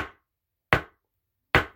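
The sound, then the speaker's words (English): A gavel strikes three times, each a sharp, loud wooden crack that dies away quickly, spaced evenly under a second apart with silence between and no voices. “So let's bang the gavel right now. Three hits.”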